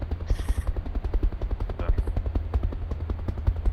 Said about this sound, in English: I'm sorry, I can barely hear you. This device seems inadequate to the rotor noise. Yeah, they're quite noisy, but unfortunately they are required.